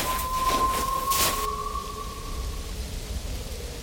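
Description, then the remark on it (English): A young man whistles a single long, steady note that holds one mid-high pitch for a few seconds and fades out, heard over a roaring, hissing wind of a snowstorm. “Is that you? I can hear you! Keep whistling!”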